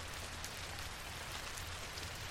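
Steady rain falls in a continuous, even hiss, with scattered droplets pattering on a surface throughout. No voices, just the constant wash of rainfall at a moderate level.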